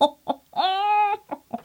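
A hen clucks up close: two short, sharp clucks, a drawn-out squawking cackle, then a few more quick clucks, loud and clear with no one talking.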